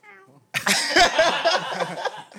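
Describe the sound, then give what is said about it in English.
A man's voice gives a short, tonal imitation of a cat's meow, followed immediately by a loud, raspy burst of noisy vocalizing that lasts nearly two seconds. “So is that man said meow, bro, for real.”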